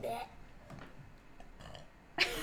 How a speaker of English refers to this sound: I have to burp.